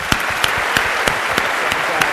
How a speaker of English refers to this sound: just one more round of applause for an awesome talk.